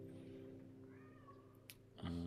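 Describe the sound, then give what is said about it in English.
Cats kept indoors meow along to a song over a steady, droning instrumental background, their calls rising and sliding in pitch, with a louder burst of sound near the end. “And the cats are gonna sing along, it seems.”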